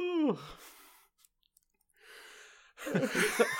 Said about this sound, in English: I covered my mouth for the real yawn, and then I did the fake yawn, and that triggered you.